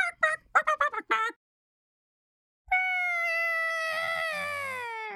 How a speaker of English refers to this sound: Oh, what's that? A grumpy bird. All right, I like it.